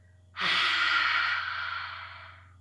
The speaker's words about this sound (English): Breathe in deep through your nose, filling your belly. One more time, in through your nose, out your mouth.